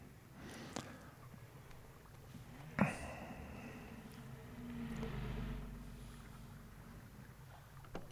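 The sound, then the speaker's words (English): A burning boat sits on open water in a film scene, with a low, steady rumble and wash, a sharp knock near the middle, and a swell of engine or wind noise, without talk. “That burning boat out there is a nice touch.”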